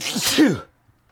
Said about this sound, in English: I'm going to sneeze. Hang on.